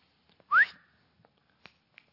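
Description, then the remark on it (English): A person gives one short, sharp, loud whistle that sweeps upward in pitch, followed by quiet with a couple of faint clicks. “Verse 26, he shall raise a signal for nations far away and whistle for them from the ends of the earth.”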